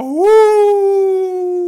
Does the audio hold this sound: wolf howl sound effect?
yes